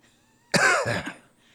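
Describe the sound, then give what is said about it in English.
A single harsh, throaty cough bursts out after a moment of quiet, loud, with a rough rattling tail that fades over about a second. “Stop that coughing!”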